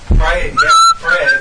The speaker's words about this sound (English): Somebody quit whistling that shit.